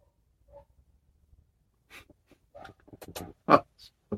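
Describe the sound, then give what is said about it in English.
Several dogs bark in an overlapping, irregular chorus, short yaps and barks piling up after a quiet start, faint, with one louder bark near the end. “Cars, God knows what, and the dogs are now back at it, you know, they're doing their bloody chorus.”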